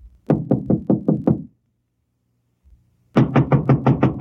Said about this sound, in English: I'll give it a knock. Go ahead.